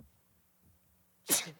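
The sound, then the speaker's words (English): A single sharp sneeze bursts out near the end after a stretch of near silence with faint low rumbling, loud, with a quick breathy tail. “Bless you.”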